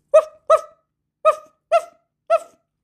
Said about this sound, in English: I took a walk to town one day and met a dog along the way. What do you think that dog did say?